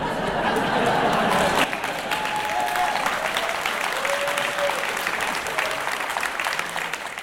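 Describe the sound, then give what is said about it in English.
A crowd applauds steadily for several seconds, the dense clapping loudest at first and easing slightly, with faint murmurs and a few brief whistles or cheers mixed in. “Quite a good reaction there from the crowds.”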